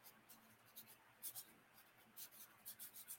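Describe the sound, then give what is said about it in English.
A sheet of paper being handled and turned over to start on a new piece, heard as a series of short, soft, scratchy rustles in an irregular rhythm, quiet, with no one speaking. “I got to turn my paper over. We got to start on a new piece of paper for you.”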